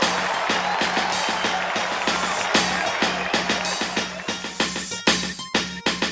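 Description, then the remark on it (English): A dense round of applause from a crowd, loud and steady at first, then thinning into scattered individual claps before it ends. “That round of applause was for you, by the way.”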